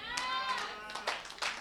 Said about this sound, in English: Hey, the clapping is weak.